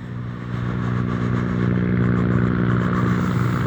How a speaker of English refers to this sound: Helicopter of some sorts from the hospital, I think, probably.